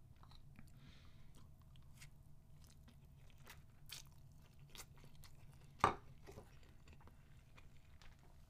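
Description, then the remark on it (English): Quiet chewing of noodles eaten with chopsticks: soft wet clicks and smacks at an irregular pace over a low steady hum, with one louder, sharper smack near the end. “I'm eating noodles.”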